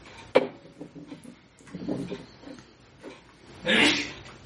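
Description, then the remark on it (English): A single sharp sneeze bursts out near the end, loud and breathy, after a stretch of soft murmuring voices and a brief knock early on. “Bless you!”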